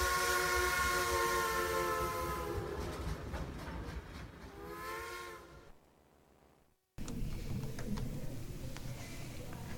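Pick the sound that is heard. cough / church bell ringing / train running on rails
train running on rails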